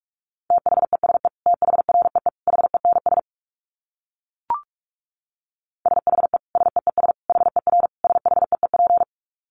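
Rapid Morse code dits at 45 words per minute: a steady mid-pitched beep keyed in quick, clipped bursts. Two long runs are separated by a pause broken only by one short blip, with no voices.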